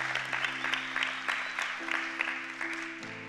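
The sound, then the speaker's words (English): A church audience claps together for the Lord after a sermon, a dense, steady patter of many hands, with a sustained organ chord droning underneath that shifts pitch near the end. “If it did, give the Lord a hand clap.”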